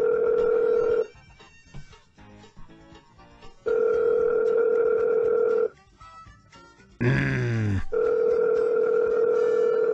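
A phone line rings out with a steady, buzzy ringback tone in three long bursts separated by pauses, with a short rough, warbling noise just before the last ring.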